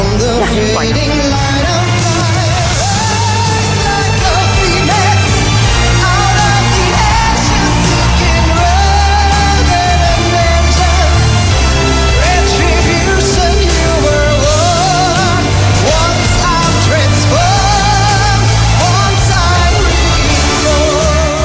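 A loud, full-sounding pop song from the 2014 Eurovision Song Contest in Copenhagen plays continuously, with a powerful belting female vocal soaring over dense, steady instrumental backing and a heavy bass line throughout.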